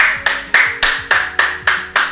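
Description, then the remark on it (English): A steady run of about eight sharp hand claps, evenly spaced in a quick rhythm, each ringing briefly before the next. Fairly loud, with no talking. “That's so, why I had to clap it up.”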